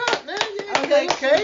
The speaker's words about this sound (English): Not you, motherfucker. We're clapping for you. 100th episode. I can't clap for myself.